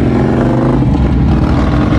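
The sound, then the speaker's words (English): Loud engines of a group of motorcycles roar steadily for a couple of seconds, a thick, rumbling drone with no talking over it. “Oh, it's a bunch of jerks and motorcycles.”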